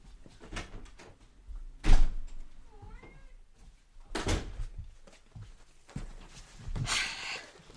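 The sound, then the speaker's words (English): A door is opened and shut, giving a few sharp knocks and thuds spaced a couple of seconds apart, with a short cat meow in between and no one speaking. “God, sorry, there's someone at the fucking door.”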